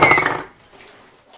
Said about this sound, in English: As she rotates her ankle to show off the design, she knocks the half-empty bottle of sake on the floor.